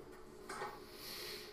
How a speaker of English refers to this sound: A lot of locks. You know what she's locking the door from?